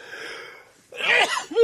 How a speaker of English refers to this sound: I'm holding the mic away while I sneeze. I hope you appreciate that.